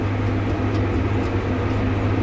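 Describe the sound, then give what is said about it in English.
A John Deere 9200 tractor engine drones steadily in the cab while working up land in a field on a Wisconsin farm during planting season. It is a low, even rumble with a deep hum and broad mechanical noise that holds constant throughout, with no voices or breaks. “I'm on a John Deere 9200 tractor, working up some land.”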